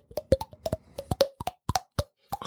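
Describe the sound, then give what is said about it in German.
A glass bottle being flicked from the outside, giving a rapid, uneven run of about fifteen hollow, mid-pitched pops with a short ringing tone, played alone without talking. “Das ist das mit von außen gegenhauen, oder? Ja, genau. Gegen Schnippen.”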